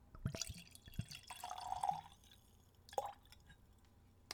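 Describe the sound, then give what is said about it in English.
A short pour of premium rum from a cork-stoppered bottle into a tulip-shaped nosing glass, with a few small clinks and a gurgling trickle that swells and then tapers off into quiet drips. “Take that little stopper out and pour myself some.”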